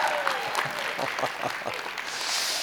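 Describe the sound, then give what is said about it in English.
Steady applause from an audience, a dense wash of many hands clapping at a fairly even, moderate level throughout, with a faint murmur of voices mixed in. “You can clap again in a way where you mean it.”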